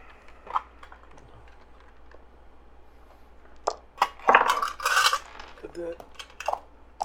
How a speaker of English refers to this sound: So go ahead and just give me a roll on just evading any kind of damage that could be happening. I have all my dice this time.